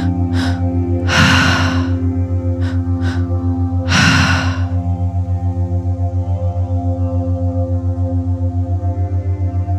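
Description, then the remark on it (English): Deep, forceful breaths, with two loud gasping inhales and a few shorter, softer breaths, all over a steady low droning hum that continues to the end. “Keep breathing, that's it.”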